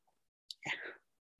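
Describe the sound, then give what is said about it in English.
A single quick sip of whiskey from a glass: a soft airy slurp lasting under half a second, heard alone in near silence with no talking. “Taking a first sip, which I'll do right now.”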